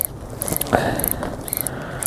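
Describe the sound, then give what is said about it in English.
A mechanical ratcheting whir of a film camera winding on after the first shot, fairly loud, with repeated clicking pulses and a sharper click near the middle, no voices present. “That's an awesome winding on noise.”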